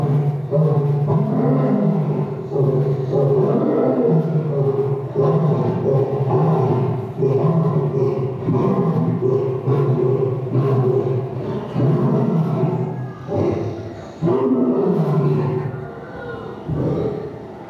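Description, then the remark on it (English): A lion roars loudly and deeply, a sustained low rumbling growl that surges in repeated waves for the whole stretch, with no voices over it. “Now, before I do, know this, that the lions have been known to be heard roaring 5 miles away.”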